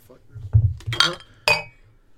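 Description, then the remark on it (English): Glasses clink together in a toast, two bright ringing chinks about half a second apart, the second with a lingering high shimmer, over a low murmur of voices. “You can't toast without drinking.”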